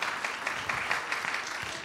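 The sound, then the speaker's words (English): An audience claps hands in praise of the Lord one morning, a dense, steady wash of many overlapping claps filling the room at moderate loudness, with no voices standing out. “I know y'all give a little hand clap of praise.”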